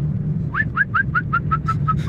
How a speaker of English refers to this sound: That's definitely a bird, not a human. It's like on the next level. That's not even easy for a human to follow the sound. That's a bird itself.